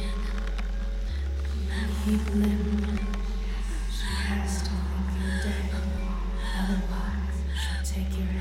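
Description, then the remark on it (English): Slow, heavy breaths come in rhythmic, breathy bursts every couple of seconds, moderately loud over a steady low droning hum. “My breathing grew heavier and heavier.”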